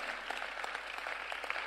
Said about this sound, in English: Put your hands together, you can do it better. If you are clapping, you should clap properly. You know, this church, we do things well. So if you are clapping, you clap well.